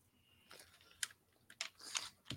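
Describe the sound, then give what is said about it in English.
Irregular clicking of a malfunctioning computer keyboard's keys, several sharp taps in quick uneven bursts, fairly quiet, with no voices. “So my keyboard's acting up here.”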